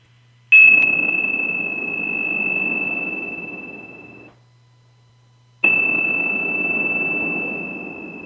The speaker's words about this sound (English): And let's ring the bells three times.